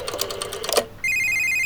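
A quick burst of clicky dialing sounds as Merle, in his small suburban house, picks up the phone to call Ronnie, then a steady, loud electronic telephone ring tone starts abruptly and holds on its own with no talking.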